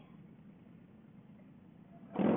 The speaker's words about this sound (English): my liquid cool engine fan just kicked on.